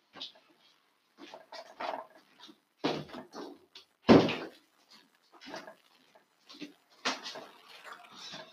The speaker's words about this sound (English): So I just needed to close the door.